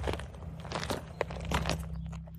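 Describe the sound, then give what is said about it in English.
Crunching footsteps on a gritty surface come up from behind someone, a quick irregular run of steps that grows slightly louder as they draw near, over a low steady hum. “She's so focused on the mysterious house, she doesn't hear footsteps coming up behind her.”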